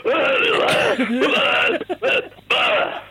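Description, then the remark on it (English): A lone voice hums a garbled, wavering idea for a song in several short bursts separated by brief pauses, the pitch sliding up and down with no clear words or steady melody. “And then this, literally, to me at least, this is what it sounded like. Okay, play this.”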